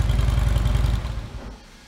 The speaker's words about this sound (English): You know, we trademarked that sound, so everybody knows it's gonna be a Harley-Davidson, but you're gonna hear that across all four of these bikes. So that's a stock twin cam motor right off the showroom floor with no adjustments.